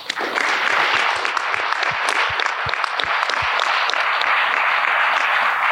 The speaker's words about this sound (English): And so we do want to give them another round of applause and let them know that we are there for those teachers.